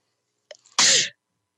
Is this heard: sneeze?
yes